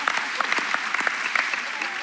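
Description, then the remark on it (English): A crowd breaks into steady applause, many hands clapping in a dense, crackling patter that holds at an even level for a couple of seconds. “So whenever, yeah, you can clap for that.”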